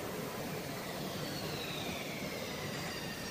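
A ship's engine roars as the ship comes in to dock, a steady, dense wash of noise, unbroken for the whole stretch, with a faint high whine gliding slowly downward above the rumble. No one speaks.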